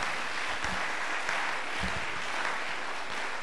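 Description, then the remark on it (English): A crowd applauds steadily, a dense wash of many hands clapping at once, sustained at an even loudness for the whole stretch with no voices breaking through. “So, yes, if you're clapping your hands, please do.”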